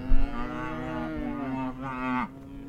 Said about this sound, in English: It's a cold February afternoon, and Alvin Lee's cows are hungry.